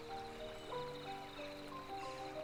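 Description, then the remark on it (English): Steady babbling of a flowing brook, with water trickling and splashing continuously around a stick placed in its path. No voices. “Taking a stick I have found lying on the ground, I go to the side and place the stick in the water.”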